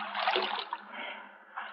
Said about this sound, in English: I struggled out of my clothes and turned to the direction from which I'd heard those shots. I began swimming, slowly, conserving my strength. For an endless time, I fought the sea.